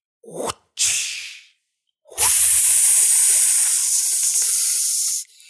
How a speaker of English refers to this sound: Ooh, that beef has got a good sizzle. Oh yeah, yeah. I'm trying this new thing. When I cook, I do it out in the open air. I do it outside. On a metal fence.